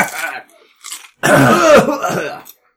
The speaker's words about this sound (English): Yeah, it's really dusty. I mean, you're all coughing and hacking.